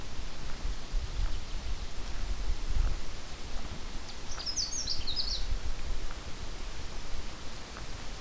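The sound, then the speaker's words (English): A Canada warbler sings one short, bright burst of quick jumbled high notes, fairly faint over a steady hiss of wind or background noise, with no one talking. “Okay, coming up on another Canada warbler.”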